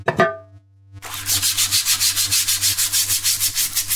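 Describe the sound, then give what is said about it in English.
A brief tonal squeak and short pause, then steady, brisk back-and-forth scrubbing, about a dozen rhythmic rasping strokes of a brush or cloth rubbing hard on a toilet seat, with no voices. “Do you really want to have your throat clawed out and your face burned off for not having properly cleaned a toilet seat?”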